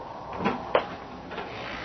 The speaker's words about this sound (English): swing that door open, please, will you?